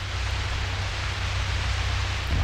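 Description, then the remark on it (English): Steady, dense radio static received from space beyond our solar system hisses evenly throughout, a loud wash of crackling noise with a faint low hum underneath and no voices. “These are sounds from space, from beyond our solar system. It sounds like any static.”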